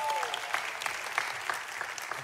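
Audience applause fills the whole stretch, a steady wash of many hands clapping with scattered sharper claps standing out at an even loudness, and no voices on top.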